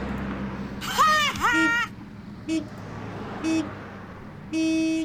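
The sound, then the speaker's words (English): A car horn honks a few times at the Mustang Library entrance: two short blasts and then a longer one, moderately loud over steady background noise, after a brief wavering, voice-like sound near the start. “You don't hear the honking?”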